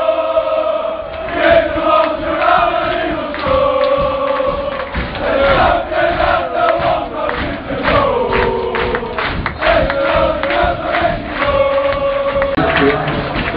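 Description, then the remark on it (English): Wolves fans in the away end of a football stadium sing and chant in unison after a 1-1 equaliser against Crusaders, a loud, sustained wall of voices with a rising and falling melody and occasional thumps, unbroken for the whole stretch. “Just listen to the atmosphere.”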